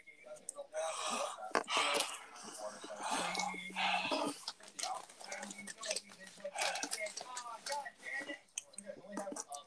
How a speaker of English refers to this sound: Breathe. I'm breathing. Deep breath.